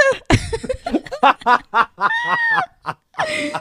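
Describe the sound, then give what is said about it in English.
A voice imitates a cough: a series of raspy, bursty vocal hacks, then two drawn-out, strained vocalized coughs, loud and with a laugh-like, sputtering quality. “She's like, doctor, when I cough, it's like a, and now it's like a.”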